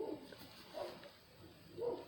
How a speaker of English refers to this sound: Okay, sorry, that was my dogs.